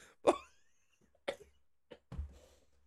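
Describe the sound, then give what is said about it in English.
Asthmatic coughing: a few harsh, raspy coughs spaced about a second apart, the first loudest, the last a rougher, lower hack, with no talking. “Fucking asthma.”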